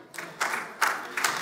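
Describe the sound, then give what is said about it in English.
About six scattered claps from a small audience, thin and fairly quiet, arriving in loose bursts roughly every half second with no talking. “Thank you for the six claps.”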